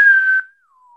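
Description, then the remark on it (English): A person whistles a short phrase: a clear, breathy high note held briefly, then a softer tone gliding gently downward and fading. No one speaks. “I know the famous whistle, and that was the last whistle.”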